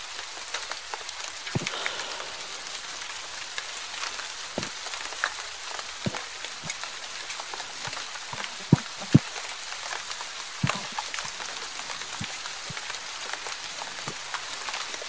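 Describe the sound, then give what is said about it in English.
Steady rain patters on a hard surface, a dense constant hiss broken by scattered louder drips and taps, with no voices, moderately loud throughout. “It's funny, it's winter here, and I'm hearing this rain, and I'm just I'm just mentally shivering.”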